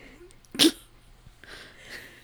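A dog named Bruce Wayne lets out one sharp, sneeze-like snort, fairly loud, followed by a second of soft breathy snuffling.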